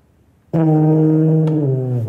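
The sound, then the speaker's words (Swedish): A single low, buzzy instrument note starts abruptly and holds steady for about a second and a half, loud and rich in overtones, sounding comically like a fart. “Det er sgu en prut, jeg kan arbejde med.”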